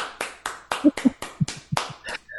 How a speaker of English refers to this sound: So for me, I think you guys are doing an amazing job, but because of that one piece here in the US, it's going to be a golf clap.